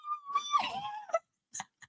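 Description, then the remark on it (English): A person makes a high-pitched, squeaky "wee wee wee" voice noise meant to get a dog's attention and make it tilt its head: a drawn-out wavering squeal that bends downward, followed by two short, quick chirps. “It's got to be the wee wee wee.”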